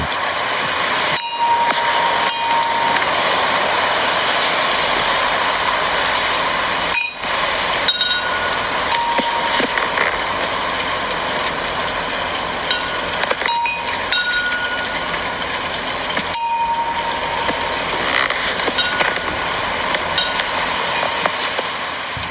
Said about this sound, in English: Another one of the sounds I really enjoy that I was sent that's outdoorsy is the one my nanny sent me, which is a recording of the sounds of the wind chimes outside of her window in the rain.